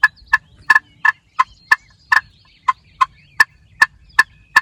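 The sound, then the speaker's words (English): A slate turkey call makes a steady series of short, soft, sweet clucks, about a dozen crisp notes with a few quick doubles, with no talking. “And you hear how that gives that nice, sweet, soft cluck.”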